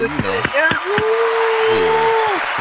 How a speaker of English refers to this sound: We really don't even have no nightclub violence this week. That shit is pretty much done. That's applause for that. Clap for that. That's excellent.